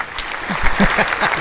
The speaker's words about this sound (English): I gave myself applause on that.